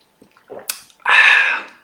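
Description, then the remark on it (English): A few soft clicks and a light clink, then one loud, airy slurp lasting about half a second as someone sips hot lemon and honey tea. No talking. “I'm just going to sip my lemon and honey tea.”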